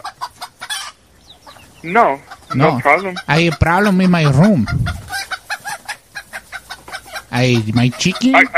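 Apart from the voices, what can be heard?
chicken clucking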